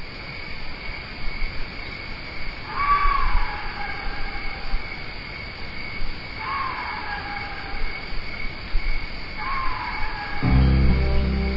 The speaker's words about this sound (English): I love the sound of that old Axis bull at night in the summertime. That was at Joshua Creek Ranch when I recorded that guy.